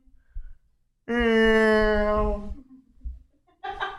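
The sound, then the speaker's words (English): A person loudly imitates a cat's meow in one long, drawn-out, strained vocal cry, followed by a shorter vocal burst a moment later. “You want to hear my impression of a go-kart chat? Go ahead. Meow.”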